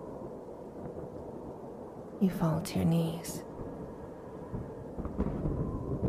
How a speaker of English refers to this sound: You hear explosions happening all around you as the ice crumbles.